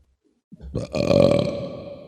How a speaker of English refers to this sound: sorry, that burp had been lingering for a bit now.